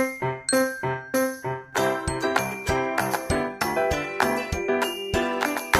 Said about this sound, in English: Are we at the operating rooms? No, that was my cell phone ringtone.